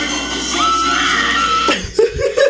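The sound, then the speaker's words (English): A woman in a played video lets out a loud, shrill scream that holds steady for about a second, then breaks off into a few short, lower gasping bursts. “And she sounds like she was gonna get killed.”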